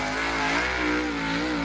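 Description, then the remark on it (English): A race car engine roars loudly, holding a steady, high-pitched revving drone with a slight rise and fall in pitch throughout the short moment, with no voices. “Oh, this is some race car shit.”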